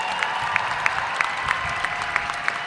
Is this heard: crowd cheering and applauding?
yes